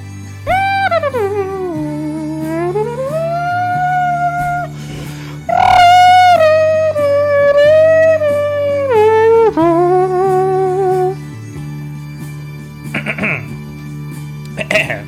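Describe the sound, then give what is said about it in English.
Bagpipes play loudly, a steady low drone humming beneath a reedy chanter melody that swoops and bends between long held notes, with a brief rise near the middle before the tune fades out. “Oh, bagpipes.”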